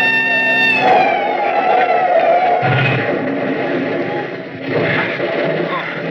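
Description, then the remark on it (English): A car roars through a fence: a steady engine drone with a brief whining tone at first, then rough crunching bursts of impact partway through and again near the end, all loud and dense. “Hang on, I'm going through the fence, right?”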